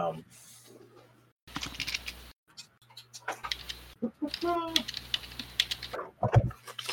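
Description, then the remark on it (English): Rapid bursts of clicking keystrokes on a computer keyboard come in several uneven flurries, fairly quiet, with a low steady hum beneath and a brief voice sound partway through. “I'm typing all this in, guys.”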